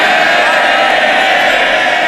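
A loud, continuous roar of many members of parliament shouting at once, a dense wall of jeering and heckling shouting down a speaker's point, holding steady without a break.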